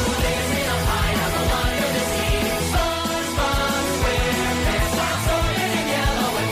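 An emo rock remix of the SpongeBob theme song plays at a steady, loud level, with driving drums and dense distorted guitars. No one speaks over the music.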